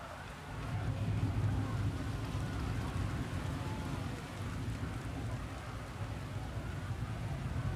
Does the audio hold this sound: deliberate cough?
no